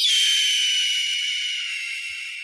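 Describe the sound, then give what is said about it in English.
A single long, harsh, raspy scream of an adult red-tailed hawk, starting high and sliding slightly downward, loud at first and gradually fading over about two and a half seconds, with no talking. “The harsh scream of an adult red-tailed hawk is one of the most iconic bird sounds in the world.”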